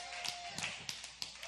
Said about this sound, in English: You know, if one's going to clap, we might as well all clap.